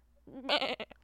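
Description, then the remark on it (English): A person imitates a goat, letting out a single wavering, nasal bleat that breaks into a shaky vibrato before trailing off. It's fairly loud, with no other sounds around it. “I'm going to help you practice your goat bleeding.”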